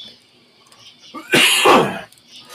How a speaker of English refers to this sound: Yeah. I just cough. I'm okay.